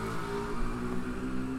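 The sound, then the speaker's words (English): A car drives past, its engine a steady low hum with a broad wash of road noise holding at an even, moderate level throughout, with no talking. “And with that passing car, we can end it, I guess.”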